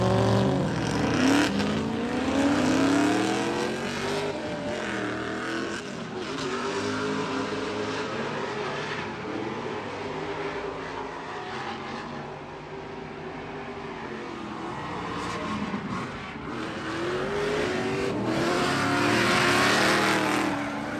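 Drift car engines roar and rev hard throughout in drift competition battles, with rising and falling pitch sweeps and bursts of tire squeal, loud, like cars battling side by side on a track.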